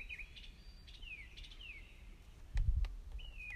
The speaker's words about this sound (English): It's really like weird bird sounds. Are all of you enjoying the bird sounds?